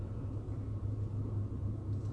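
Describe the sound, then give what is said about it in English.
A big truck idles outside with a steady, deep engine rumble, continuous and fairly loud throughout, with a low droning hum and no voices. “Where is this big old... truck. They're dropping off a car for me?”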